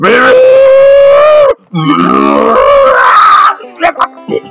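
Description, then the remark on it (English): A voice imitates a car engine: a loud, steady droning hum, a short break, then a rising revving whine that breaks into a few sputtering bursts before stopping, like the engine dying. “You make a pitiful engine sound.”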